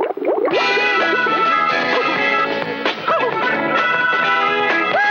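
A loud, ringing F add 9 guitar chord, played on a Rickenbacker 12-string and a Gibson acoustic 6-string, with D tones resonating, thick with layered strings, sustains for about five seconds while a few wavering, bending tones drift underneath.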